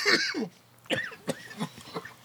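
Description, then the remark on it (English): A bout of coughing: one long, rough hack followed by four shorter, sharp coughs in quick succession, with no talking around them. “Where the fuck did this cough come from?”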